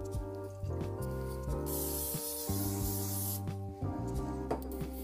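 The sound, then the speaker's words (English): A steady hiss of cooking spray from an aerosol can onto a silicone baking pan lasts a couple of seconds, clear, over soft background music with a few light clicks before and after. “Okay, now I need a pan. I use the silicone pans because my dad likes it when they're like square shaped. Where's the spray?”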